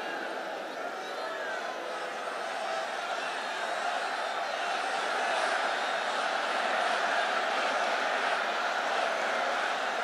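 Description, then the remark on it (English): A large political rally crowd roars and shouts angrily together in a dense, continuous wall of voices, sustained at steady loudness for about ten seconds without letting up. “And the crowd goes angry.”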